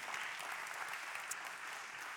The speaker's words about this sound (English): And as a church, we raised $24,000 to that. And so big shout out to all of you guys who were just generous and gave. But we also, we can clap for that.